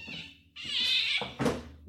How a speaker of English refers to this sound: Oh, my God, Cat.